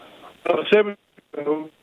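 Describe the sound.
A voice over a crackly, thin phone line cuts in and out, speech arriving in choppy fragments separated by abrupt dropouts of near silence.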